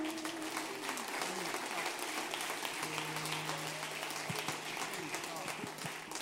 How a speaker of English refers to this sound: God bless you today. Give yourself a hand clap this morning.